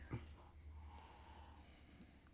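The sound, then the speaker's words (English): A short sniff at the start as someone breathes in the aroma from a glass of dark, smoky beer, followed by soft breathy noise and a faint click. No one speaks. “So have a sniff of that.”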